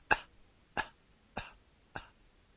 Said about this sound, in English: Breathe it out in a series of gentle coughs without inhaling in between. I'll show you what the sound is like. Very soft.